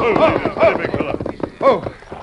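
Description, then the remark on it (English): Hooves of six riders' horses clip-clop in an uneven rhythm, moderately loud, arriving in a few bunched clusters with brief pauses between them, as the horses slow to a halt after a hard, fast ride of several miles away from town. “You can stop here for the horses to get their wind.”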